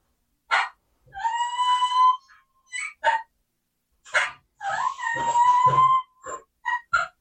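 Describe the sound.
Two drawn-out, high whistling squeals from a turkey call, each rising and then holding steady, with short sharp clucks before, between and after them. No one speaks.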